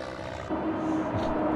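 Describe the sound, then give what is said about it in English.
A loud, dense roaring rumble, like an airplane crash sound effect, that swells sharply partway through and stays heavy and sustained to the end, with no voices. “Right after the Wills and his family all die in a terrible plane crash next Tuesday.”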